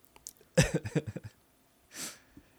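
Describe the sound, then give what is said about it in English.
A person clears their throat in a quick run of about six rough, voiced pulses, followed after a pause by a short breathy exhale. No one speaks. “I have to clear my throat after that.”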